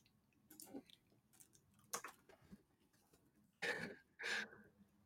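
Two sharp coughs in quick succession near the end, preceded by softer throat sounds and faint clicks against a quiet background.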